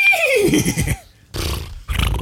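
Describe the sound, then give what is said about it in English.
A person imitates a horse whinny: a loud, descending neigh that trails into a breathy rumble, followed by two short snorting bursts after a brief pause. “Make your horse sound.”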